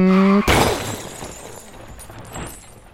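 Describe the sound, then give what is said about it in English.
A sustained horn-like tone cuts off into a loud car crash as a man who has just driven off crashes his car, followed by glass shattering and debris clattering as the noise fades over a few seconds. No one speaks. “I believe he left and then immediately crashed his car.”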